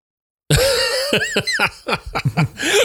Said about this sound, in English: Sorry, I'm giving myself the hiccups now.